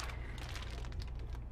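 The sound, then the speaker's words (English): Steady crinkling of the paper wrapper of a sausage roll being eaten, a quick run of soft crackles and rustles that continues throughout with no one talking. “That paper's gonna be really crinkly. Eating a sausage roll.”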